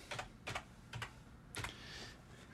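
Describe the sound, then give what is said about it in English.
Several crisp keyboard keystrokes as someone enters a zip code on a blood donor questionnaire, tapped out at an uneven pace, fairly quiet, with a faint background hiss between the clicks. “Enter your zip code.”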